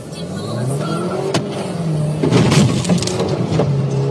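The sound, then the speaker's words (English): A car stopping on a one-lane highway: its engine hums loudly and steadily, rising slightly in pitch and intensity toward the end, with road noise and a few sharp clicks mixed in. “A car stops on a one-lane highway.”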